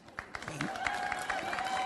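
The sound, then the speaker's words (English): Steady applause from an audience at an author's talk, following mention of a band: dense overlapping claps forming a continuous moderate wash, with faint voices and a brief whistle-like tone mixed in. “These people have never heard the band. That's why they're applauding.”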